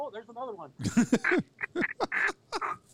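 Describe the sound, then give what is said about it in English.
Bluebill ducks calling near a hunting blind with a run of raspy, nasal quacks in quick, uneven bursts, loud, one call overlapping the next. “Oh, it's a bluebill.”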